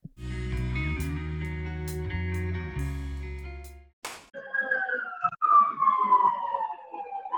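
After a loud, steady tonal stretch breaks off, a fire truck siren wails and slowly slides downward in pitch as it passes, staying fairly loud over low rumbling traffic noise.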